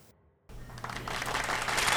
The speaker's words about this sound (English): The fake applause from the people around the world. The fake cough applause from everybody.